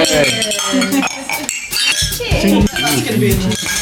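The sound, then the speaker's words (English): Glasses clink together in a toast several times in quick succession, bright, as voices chatter and murmur underneath. “Cheers. Cheers. Cheers.”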